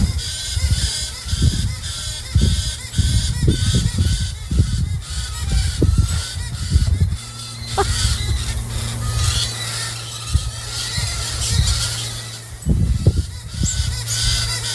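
A single goose-like bird honks over and over in an outdoor yard, its loud, harsh calls coming in rapid repeated bursts with brief pauses and going on for a long stretch, over a steady hiss of background noise.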